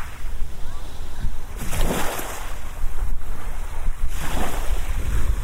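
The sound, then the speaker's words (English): Small waves lap gently against the shore, with two fuller surges that thump in a slow rhythm over a constant hiss of water and light wind rumble on the microphone. “It's a tiny little waves hitting the shore, and sometimes they gently lap around, and sometimes they sort of thump.”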